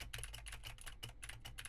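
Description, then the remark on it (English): Rapid, clicky typing on the W and spacebar keys of a keyboard with Gateron blue switches, recorded with a TLM103 microphone: sharp key strikes in a quick, uneven rhythm, with a low background hum underneath and no voices. “And for the gaming folk, I am typing on the sad W and spacebar keys on the TLM103.”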